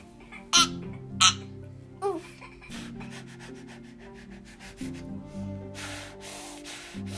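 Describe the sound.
A child lets out two short, sharp breathy bursts imitating a sneeze, followed by a brief squeaky vocal sound, over a low, steady room hum.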